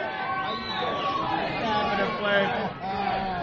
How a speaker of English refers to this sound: Yeah, the crowd chanting for Flav.